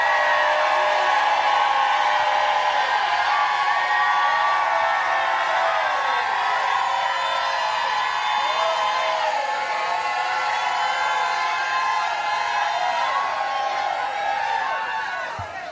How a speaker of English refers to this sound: Now jump up to your feet and shout like you never shouted in your life.